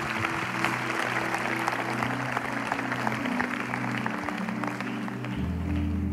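An audience claps steadily throughout, a dense, sustained wash of applause from a sizable crowd, with low sustained musical tones humming underneath.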